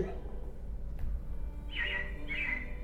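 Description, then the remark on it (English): Two short, bright chirps from robins come close together near the end, over a steady low background rumble, with a single sharp click just before them. “Yeah, it looks like the Robins are getting ready to celebrate Valentine's Day today.”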